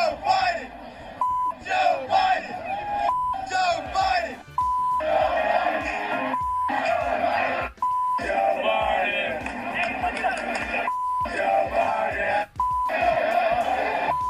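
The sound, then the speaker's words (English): A large crowd at a sporting event chants "F Joe Biden" loudly in a steady, repeating rhythm, with short, sharp electronic beeps cutting in at regular intervals throughout. “Random acts of F Joe Biden chants have been noted at sporting events, concerts, and of course, public appearances by gropey Joe Biden.”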